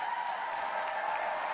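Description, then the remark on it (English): A large crowd applauds after a political speech to the people of New York State, a dense wash of clapping that holds at an even, fairly loud level for a second and a half, with no individual voices standing out. “That's a lot of screaming and pomp and circumstance”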